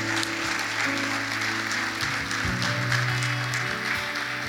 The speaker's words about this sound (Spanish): Ayúdeme a darle un fuerte aplauso al Señor.